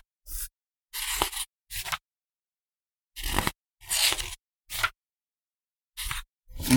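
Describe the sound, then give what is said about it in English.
Pages of a paper logbook being flipped, about eight quick, crisp rustles in uneven bursts separated by short pauses, fairly loud, with no one talking. “Listen to you with your paper logbook.”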